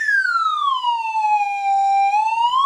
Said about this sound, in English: Nothing adds a little pep to a broadcast like a slide whistle.